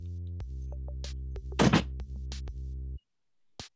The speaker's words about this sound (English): So I definitely, one moment, let me close this door because this is my son's being a little bit loud.